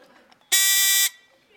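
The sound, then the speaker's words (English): A single loud, harsh buzzer blast lasting about half a second, steady and bright with a rasping tone, set between faint background murmur before and after. “So what if we were praying and somebody was sitting there buzzing our empty words?”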